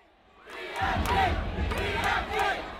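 A packed London club crowd at a rapper's world-tour concert erupts into loud cheering and shouting, building quickly and holding as a dense wall of excited voices, with bursts of whoops rising above the roar.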